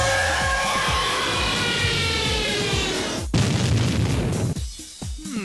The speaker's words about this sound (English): Okay, let's just move on to the last sound effect of... Sound effect. Last explosion now. See if you can guess it.